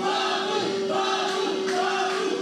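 crowd chanting

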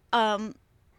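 dog barking

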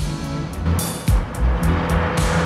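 car driving

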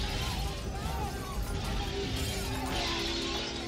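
window glass shattering

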